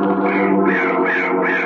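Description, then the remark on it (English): A carrion crow caws harshly and loudly in a continuous raspy call that swells about three times in quick succession with no pauses between. “I told him that Corvus Coroni was the bird of death.”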